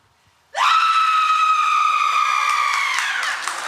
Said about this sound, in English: Okay, there's someone who's saying, I'm willing to scream. She's not sure if it'll be a good horror scream. She will scream for you, caller.